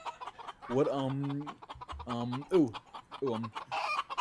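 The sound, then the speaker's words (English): A chicken clucks loudly in a few drawn-out, wavering bursts, with brief pauses between them and nothing else around. “That was a weird like school chicken.”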